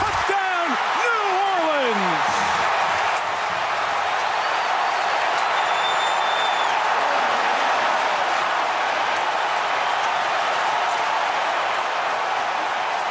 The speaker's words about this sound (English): Players have said they've never heard anything as loud as the crowd that day.